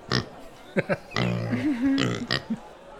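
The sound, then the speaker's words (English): A person makes a short run of guttural, snorting grunts and oinks, imitating a pig, fairly loud, with a couple of brief sharp snorts at the end. “You feel pretty good, Pig? Oink, oink.”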